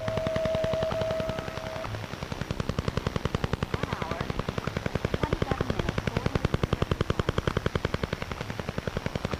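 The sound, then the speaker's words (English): Shortwave radio interference from a number station active from 1976 to 1989 that interfered with local broadcasts and airplane communications: a fast, relentless mechanical tapping, roughly ten clicks per second, buzzing over hissing static, with a brief steady whistle tone at the very start. “Some of these stations interfered with local broadcasts and affected airplane communications. The Russian Woodpecker was one such station.”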